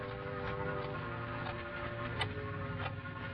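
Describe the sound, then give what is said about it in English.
A clock ticks slowly and faintly in a dark, quiet house, each soft tick roughly a second apart, sitting beneath a steady low electrical hum in otherwise total silence. “It was so quiet, I could hear the clock ticking.”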